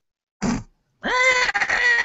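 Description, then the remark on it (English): A person imitates a goat: a short, rough vocal burst, a brief pause, then a longer strained, nasal bleat that comes out closer to a honk. Loud, with no talking. “That didn't sound like a goat at all.”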